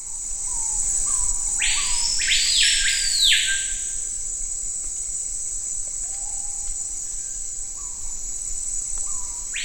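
A screaming piha, a grey bird about the size of an American robin, gives a loud, ringing whistled call that bursts out in a quick series early on over a steady, high insect drone, with fainter bird whistles scattered through the rest.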